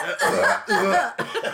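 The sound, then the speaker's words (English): A voice imitates an old woman's exaggerated, hacking cough in three loud, raspy bursts, each harsh and breathy with short gaps between. “Is it the old coughing woman?”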